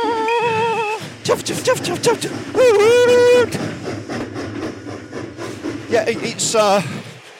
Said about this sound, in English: There goes the train. It's like we're running through the BBC Radio Funny Workshop this morning. Yeah. Stay back, it's coming through!